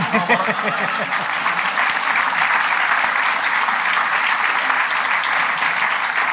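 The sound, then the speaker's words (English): An audience claps steadily in a dense, sustained round of applause for Mick Mooney and the team at the Natural Kitchen in Kitchen 62, who backed the evening's event. The applause holds at an even loudness for several seconds, with a few faint voices mixed into the clapping. “So if we can give them a big round of applause.”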